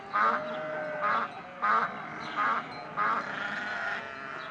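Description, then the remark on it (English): Five nasal duck quacks in a steady, evenly spaced rhythm, fairly loud, over a continuous tonal background with no talking. “I hear the ducks going quack, quack, quack.”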